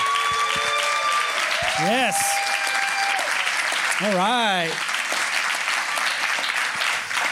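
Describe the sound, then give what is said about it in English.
A church audience applauds steadily to welcome one of the church's elders as he is called up, a dense wash of clapping throughout, while a voice calls out briefly and another voice rises and falls in short sung or exclaimed phrases over it. “Come on, give him an applause.”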